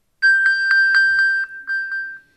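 An iPhone pinging after the little iPhone button in the Apple Watch control center is tapped: a steady, high, bell-like tone with a rapid series of about nine bright chimes on top, gradually fading, with no voices.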